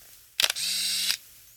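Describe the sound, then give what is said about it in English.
A Yashica Minitec compact film camera with a 32mm f3.5 lens fires its shutter with a couple of crisp clicks, followed by a short mechanical whirring wind that stops with another click; no one speaks. “What a classic, great sound that is to a shutter.”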